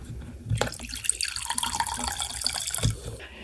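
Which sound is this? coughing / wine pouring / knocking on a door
wine pouring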